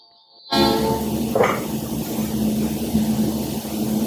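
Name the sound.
train passing with horn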